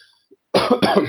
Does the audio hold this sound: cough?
yes